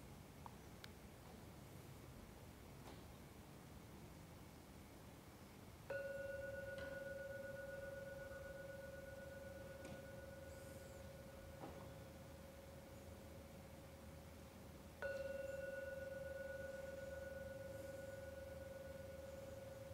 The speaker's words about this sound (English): I'm now going to ring the gong 3 times. Please listen, if you can, to every sound from the gong. When the last ringing of the gong disappears, it's a signal the meditation is over.